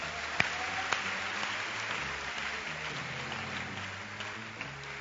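audience clapping hands

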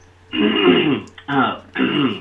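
throat clearing and coughing

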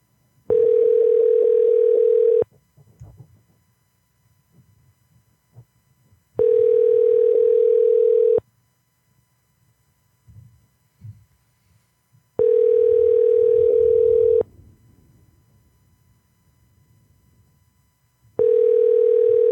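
telephone call tone

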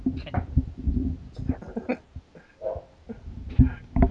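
dog barking

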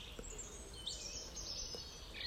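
birds chirping outdoors

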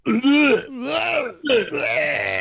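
throat clearing

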